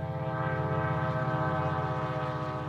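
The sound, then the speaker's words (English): A commuter train passing Alviso Marina County Park, a small marsh in Silicon Valley on the southern San Francisco Bay, California, blares its horn steadily and loud, its sustained harmonic tones held throughout with the low rumble of the passing train beneath, no voices present. “Commuter trains pass right by the Alviso Marina County Park, a small marsh in the heart of Silicon Valley.”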